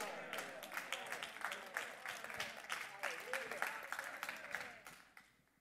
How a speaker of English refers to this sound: Now, some of you are clapping on credit, but it's all right.